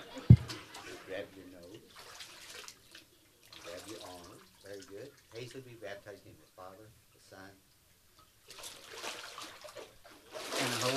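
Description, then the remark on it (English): Water splashes and runs off people in bursts as they go down steps, with a steady pouring wash toward the end, while several people talk over it. “You wouldn't believe the amount of water that runs off these people as they go down the steps.”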